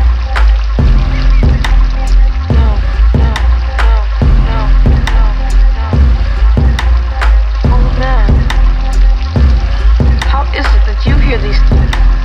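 Waterbirds honk and quack repeatedly near a steady wash of flowing water, the calls rising in short bursts above a constant, loud background rush.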